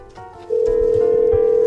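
A missing phone rings with a single steady electronic tone that cuts in abruptly after a brief quiet moment and holds loud, with soft low thumps underneath.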